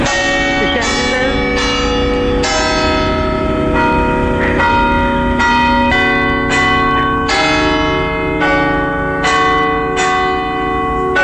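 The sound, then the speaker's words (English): Church bells ring out loudly and steadily, strike after strike about every second, their rich overlapping tones hanging and blending into a continuous resonant peal. “I bet you Big Ben wasn't as beautiful, I bet you Big Ben's bells weren't as beautiful as these bells.”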